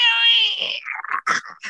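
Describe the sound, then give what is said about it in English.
During a game, a voice imitates a creature's screech at a player's character. The voice lets out a shrill, wavering screech, holding a high pitch for under a second before breaking into a few shorter, rasping squawks. “And it screeches at you.”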